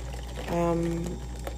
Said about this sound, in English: C'est le fridge noise. I'm here because I'm in my kitchen because I'm trying.